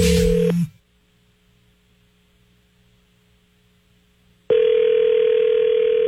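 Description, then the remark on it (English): A telephone dial tone for the Phone tag call on the Up and Adam in the Morning radio show hums loudly for a moment, then cuts to near silence with faint line noise before another steady, loud phone tone returns and holds to the end. “Phone tag is on.”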